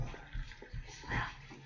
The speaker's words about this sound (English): there's some hot tea on the table. Will you pour me?